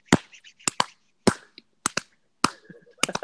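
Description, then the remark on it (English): Sharp, loud hand claps ring out in a loose rhythmic pattern, about nine in all, some falling in quick pairs, with short quiet gaps between them and no talking. “You heard that clap? It was a rhythm to that.”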